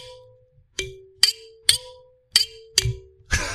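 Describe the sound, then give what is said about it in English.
A thumb piano is plucked in a halting rhythm, about five ringing, low-pitched notes that each start with a sharp click and fade slowly, ending in a brief noisy rattle. “Oh, I found this thumb piano, or whatever you call it.”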